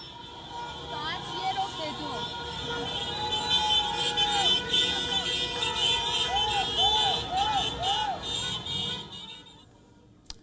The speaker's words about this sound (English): Another video shows a busy street in Tehran where commuters are honking their horns as a group of Iranian protesters chant on the side of the street.